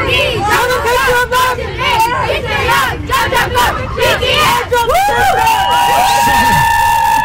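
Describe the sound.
A large crowd outside the White House cheers and screams loudly and continuously, many high-pitched voices overlapping in an excited roar, with shrill shrieks rising above the dense babble.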